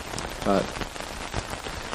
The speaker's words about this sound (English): And if not, just feel free just to block me out, and the nice rain sounds will fade off eventually in a few minutes.